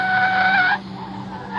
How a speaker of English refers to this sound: The squealing of brakes was like a familiar voice, an executioner's verdict read in his memory.